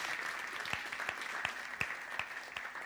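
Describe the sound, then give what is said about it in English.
A crowd applauds steadily to welcome guests at a morning gathering, a dense wash of many hands clapping with a few louder claps standing out at regular intervals; no one speaks. “I wonder if we could give them a welcome and a round of applause.”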